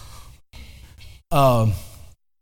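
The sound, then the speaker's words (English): Men in a sound booth coughing: a few rough, breathy coughs in quick succession, then a louder, falling voiced groan or sigh that cuts off. No one speaks. “Some guys in the sound booth are coughing right now, so that's good.”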